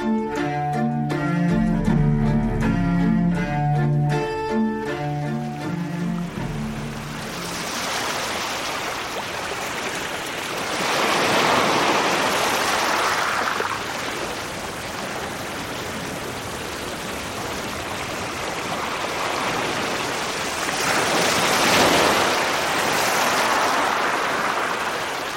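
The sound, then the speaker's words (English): Ocean surf on the California coast rolls in after a brief musical opening, with broad hissing waves swelling and receding in slow cycles about ten seconds apart, steady, with no voices. “Kim Wilson recorded these California surf sounds.”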